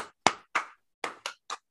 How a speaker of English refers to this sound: I don't know why I felt the need to clap, but I know it felt good.